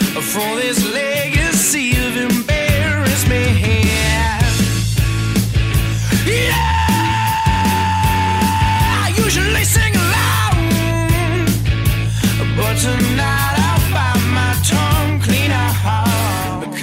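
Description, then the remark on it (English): A loud rock band plays with heavy bass and drums while a male vocalist belts a long, strained screamed "yeah," held for several seconds over the full mix. “And that yeah is that scream.”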